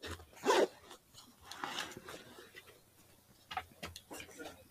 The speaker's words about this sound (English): When there was a bag opening, that's even more suspicious. That was me. All right. That was dice.